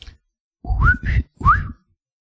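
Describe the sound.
Three quick whistled chirps with bright upward-sliding pitch, a bird warbling like a tiny R2-D2, fairly loud, with a short pause before the last one and no talking.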